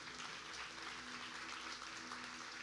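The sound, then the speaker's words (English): An audience claps for the Lord together in a dense, steady wash of applause lasting a few seconds, with a faint low hum underneath and no distinct voices. “Can we give the Lord a clap?”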